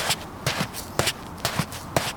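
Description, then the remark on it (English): Heavy stomping footsteps as a person stands up and stomps over to someone, crossing a hard floor at a steady, deliberate pace, about five thudding steps with a faint scuff between them and no voices. “stands up and stomps over to where he is.”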